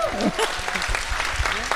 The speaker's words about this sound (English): I said that was worthy of a clap as well.